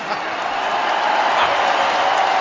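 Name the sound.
crowd cheering and applauding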